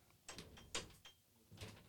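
A door is pushed shut with a few soft knocks and rattles, a brief sequence of muffled thuds, fairly quiet, with no talking.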